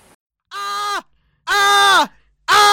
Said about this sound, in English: Stop! You gotta stop yelling.